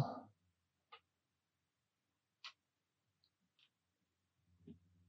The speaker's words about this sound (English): So are you rerolling? Yes. Especially because that one's not good. I love the sound of dice in the night.